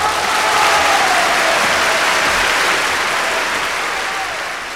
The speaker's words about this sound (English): So, can we please have a big AI round of applause